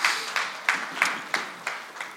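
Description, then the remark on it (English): A church audience applauds the worship musicians with a noticeably even, rhythmic pulse of claps about three per second, steady and moderately loud over a continuous wash of hand noise, with no voices. “Give those guys a round of applause, man.”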